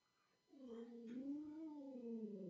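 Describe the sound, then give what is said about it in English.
A female cat, walking, howls in one long, drawn-out yowl that begins abruptly and holds for about two seconds, its pitch wavering slightly up and down. The sound is loud and steady, with no talking. “Yeah, you can hear her walking and she's howling.”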